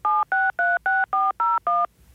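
Seven telephone keypad tones beep in quick, even succession, each a short dual-pitched blip, loud, with no voices.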